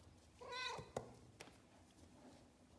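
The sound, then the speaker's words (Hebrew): A cat named Arik lets out one drawn-out, whiny, complaining meow while being petted, fairly loud, followed by a couple of soft rustles or taps and then quiet. “זה לא נשמע כאילו אתה מיילל יילולי שמחה. נשמע כאילו אתה מתלונן.”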